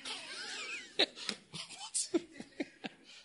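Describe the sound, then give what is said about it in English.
An audience member during a talk lets out a series of short, sharp coughs, quiet, spaced irregularly over a few seconds with faint background murmur. “You will not know because I was talking and somebody coughed.”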